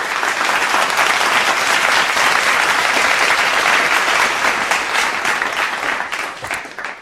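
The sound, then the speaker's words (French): Sustained audience applause, a dense steady wash of many hands clapping at full loudness for several seconds before thinning slightly toward the end. No one speaks. “Et il faut vraiment l'applaudir.”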